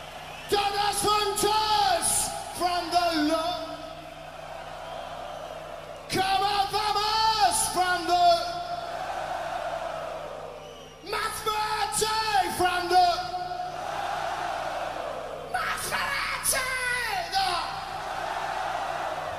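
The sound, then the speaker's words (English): A singer yells rough, strained vocal lines in repeated bursts over a loud live band, with dense cymbal wash and crowd noise, at a concert in Chile in 1996. “This is from a concert in Chile in 1996.”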